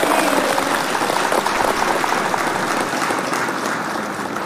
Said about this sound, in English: So you guys know that that clap is for all of us. It's for you, it's for me,